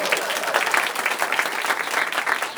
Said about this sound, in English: People either like to applaud or they don't. By applause, how many people like to applaud?